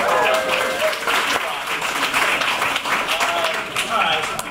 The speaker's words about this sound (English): So a round of applause for the N-400.